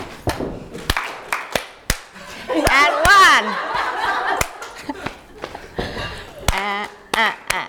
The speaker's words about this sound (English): So the stamp, clap, clap, and back to the start. Okay. Clap, tap, tap, clap, slap, slap, stamp, clap, clap. And one.